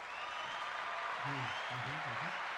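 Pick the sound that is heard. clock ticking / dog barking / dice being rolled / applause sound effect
applause sound effect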